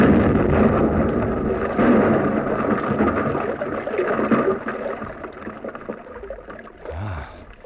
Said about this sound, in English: The two men disappeared up the gallery, and I was left alone to explode the charge. I connected the wires, moved the exploder as far as it would stretch into the tunnel, and then I pressed the handle.